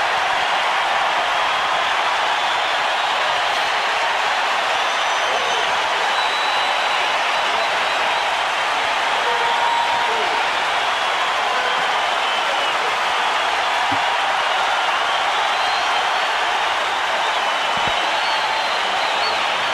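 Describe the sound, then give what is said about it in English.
A huge crowd of Dodgers fans at a baseball stadium roars and screams as Kirk Gibson comes up to bat, a steady, unbroken wall of cheering that holds at full volume for about twenty seconds, with no voices standing out. “Let's the audience hear the Dodgers fans screaming.”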